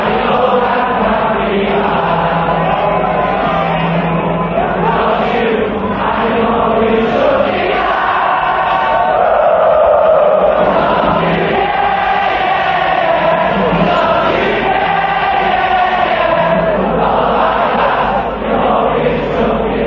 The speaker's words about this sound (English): The music the crowd sings is the music that Liverpool has sent echoing around the world.